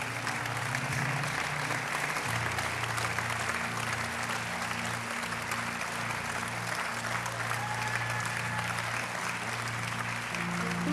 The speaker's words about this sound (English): You can keep clapping.